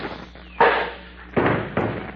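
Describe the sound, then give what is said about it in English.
A cuspidor thrown at a man lands with a loud, sharp crash, followed by two more clattering impacts in quick succession, noisy, with no talking. “I'll throw his cuspidor at him.”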